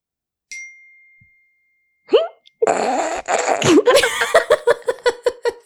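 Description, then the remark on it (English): A single bright old phone notification ding rings out and fades over about half a second, then, after a short pause, loud bursts of laughter and giggling take over. “The old phone ding.”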